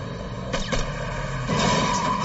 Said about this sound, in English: One of the gunmen tries to shoot at the agents. The SWAT members open fire. When the gunfire erupted, I think all of us in the back of our minds were saying, "I hope we don't end up hitting our confidential source."